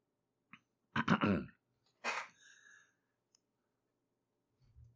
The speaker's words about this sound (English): Just give me one second here. That's why there's all this clicking. I'm going to try a different setup here.